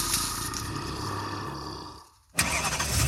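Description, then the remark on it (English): A used car's engine cranks with a rapid, grinding churn for about two seconds without catching, goes briefly quiet, then bursts back into a loud, rough rumble. No talking. “If you were in a horror movie, this would be the part where the used car you just bought doesn't start.”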